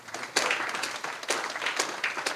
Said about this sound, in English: Yeah, clap. Yeah.